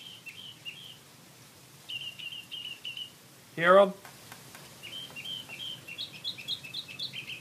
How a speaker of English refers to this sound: Doing every bird call, doesn't shut up. 3 a.m, moron. So see, there you go. That was actually recorded right out in my yard.